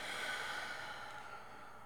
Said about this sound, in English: And I'd like to invite you to breathe in through your nose and out through your mouth.